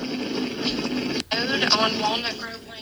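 A steady, loud jet-engine-like roar fills the whole stretch, broad and hissing, with one abrupt split-second dropout before the rushing noise resumes just as strongly.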